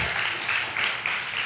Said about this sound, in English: And so what I want to do right now is I want to invite them up on stage with us. Let's give them a big round of applause as they come up.